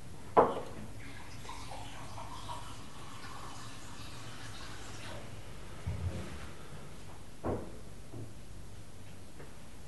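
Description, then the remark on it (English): Water is poured from a bottle in a steady, soft hiss for several seconds, broken by a few brief clinks and taps; no one speaks. “Can I get you some water?”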